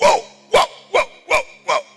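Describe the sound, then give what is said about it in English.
A person imitates a dog barking, giving five sharp, loud barks in a steady rhythm about every half second, with no other talk. “I said, I thought they are sheep. Not that they are dogs.”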